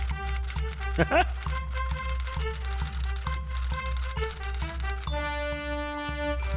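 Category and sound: household object, typewriter clacking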